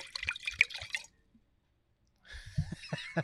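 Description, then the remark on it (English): Wine glugs and splashes into a glass in two short pours separated by about a second of silence, with a bright, bubbly trickle. No one speaks. “So sit back, pour yourself a glass, and let's hear what the guys have to say this week.”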